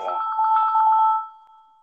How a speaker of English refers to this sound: Ring, ding, dong. Ring, a ding, ding, ding, dong. I think that, that chime that just happened just tells it all. Right. That's the victory. That was the victory ring against Dallas, baby.